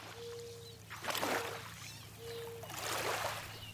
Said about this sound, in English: sound map of the Housatonic River